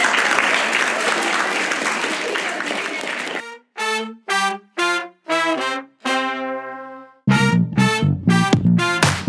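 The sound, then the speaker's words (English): An audience gives a boy a clap, clapping steadily for about three seconds, a dense, even patter of many hands that then stops abruptly, followed by a series of short, loud voiced bursts. “Okay, give him a clap.”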